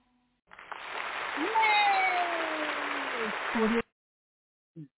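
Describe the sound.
A burst of crowd applause sound effect with cheering voices and rising whistles, a dense steady roar lasting about three seconds before stopping abruptly, followed by a brief faint blip.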